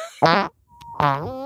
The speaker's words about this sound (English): I am a little gassy tonight, I'll say that. Oh, God, the farts, they're back, baby. Dear God, the farts.